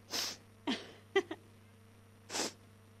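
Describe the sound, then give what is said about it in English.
Three short, hissy sniffs through the nose, spaced unevenly, with a brief soft throaty catch in between, over a steady low hum and no talking. “I need a tissue. I got the sniffs.”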